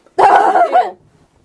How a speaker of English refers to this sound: My dog is having a heart attack, I swear.